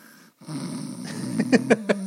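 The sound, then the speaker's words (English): A person imitates snoring: a low, gravelly rattle that builds into a few sharp, rhythmic snorting pulses near the end, with no other talking. “I can make snoring sounds anytime you want me to.”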